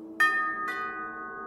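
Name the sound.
doorbell ringing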